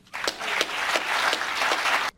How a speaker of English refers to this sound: Man, he gets good applause, dude. I'll tell you what.